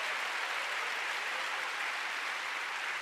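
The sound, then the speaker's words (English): A crowd claps steadily, giving the Lord a big hand: a dense, even wash of many hands with no break or rise, holding at a moderate level for the full few seconds without any voices. “Oh, you're on the clap. Let's give the Lord a big hand.”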